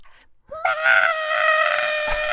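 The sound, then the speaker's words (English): A voice imitates a turtle scream with one long, shrill, piercing wail that bursts in after a moment of near-silence and holds loud and steady for nearly two seconds. “Okay, my queen, I do need to hear what a turtle scream sounds like.”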